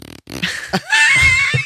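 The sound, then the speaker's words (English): A voice makes a short, raspy fart imitation with a rising whistly squeal, loud, followed by a brief breathy sputter. “And when he'd be giving a serious answer, he'd kind of shift in his chair and just squeeze it, and it would look like he farted.”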